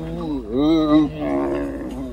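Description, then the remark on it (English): A camel's loud, throaty groaning bellow, rich in harmonics, rising and falling in pitch across a few drawn-out, moaning phrases with no other sounds. “It's one of the camels, and I'm telling you, these are the noises my dog makes.”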